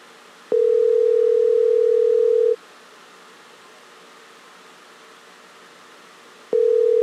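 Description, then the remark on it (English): An outgoing call, tried one more time, gives its ringback tone: a steady mid-pitched electronic tone sounds for about two seconds, goes silent for four, then starts again, alone against faint background hiss. “There's no way he's going to answer this time.”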